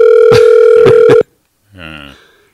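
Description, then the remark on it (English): A loud, steady telephone dial tone of an outgoing call placed by two old men hums for about a second with a few sharp clicks over it, then cuts off abruptly; after a brief silence, a short voice is heard. “This is two old guys making a phone call.”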